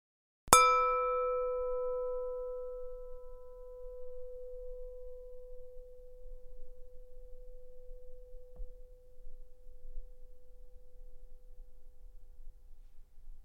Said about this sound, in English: Bring your full attention to the physical sensations of sitting still as we begin and end this meditation with the sound of the bell.